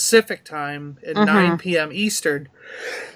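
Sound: sneeze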